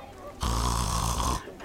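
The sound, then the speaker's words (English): A person imitates giant frogs snoring with a single loud, rumbling snore lasting about a second, a deep buzzy rasp with strong low-end rattle, otherwise alone. “Are you snoring with me?”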